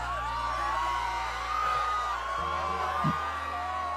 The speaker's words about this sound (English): Pay no attention to the screams in the background. It's perfectly normal.